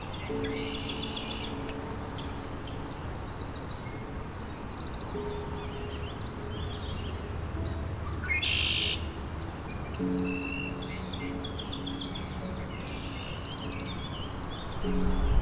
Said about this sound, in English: Red-winged blackbird.